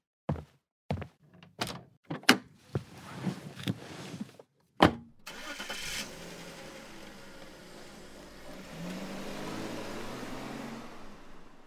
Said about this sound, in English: He opens the door and walks out.